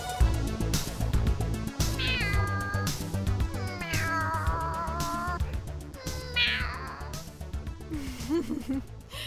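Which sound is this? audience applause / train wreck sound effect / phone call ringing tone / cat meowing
cat meowing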